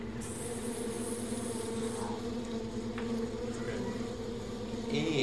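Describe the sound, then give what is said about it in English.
A steady, intense buzzing drones on without pause, dense like a swarm of bees or wasps, with a faint high whine layered above, as a ring shifts position, lights up and glows red. No one speaks. “shifts position, lights up, and glows red for a second, and you hear this like intense buzzing noise.”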